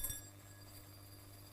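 A quick, faint clink of two coins, 5-cent pieces standing in for the poor widow's two copper coins in a retelling of the Bible story, a bright metallic chink, followed by a softer tinkle and then a low, steady hum with no talking.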